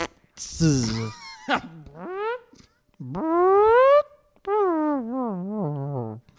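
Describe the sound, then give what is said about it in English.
A voice imitates a sad, deflating fart: a few drawn-out, wobbly tones that slide downward and fade, with brief pauses between them, fairly loud. “Sad fart.”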